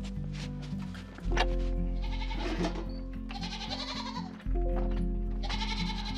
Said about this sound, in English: Hey, goats! What are we up to today?